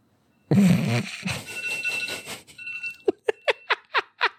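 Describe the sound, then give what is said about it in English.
An alarm goes off: a busy electronic jingle plays for a couple of seconds, then breaks into a quick run of about six sharp, evenly spaced beeps. No one speaks. “Why did I set that alarm?”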